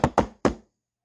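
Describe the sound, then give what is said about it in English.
Three loud, heavy knocks by hand on the wooden front door of a mansion, the first two quick together and the third after a short pause, each with a brief resonant ring. No voices are present. “You knock loudly.”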